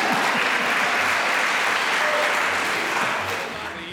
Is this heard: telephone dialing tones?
no